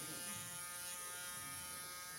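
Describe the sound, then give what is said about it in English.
A small rotor, spun up on air bearings, spins steadily with a continuous buzzing whir, fairly loud, sounding like a tiny propeller engine or an electric shaver, with no speech. “I love to spin it up. Sounds like a little small airplane.”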